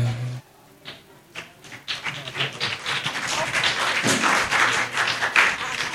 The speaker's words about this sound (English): Will you please stand up and clap for daddy and mommy?